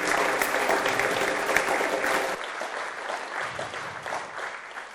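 A crowd claps steadily and densely, a loud dense patter that thins and softens a little about halfway through but keeps going to the end.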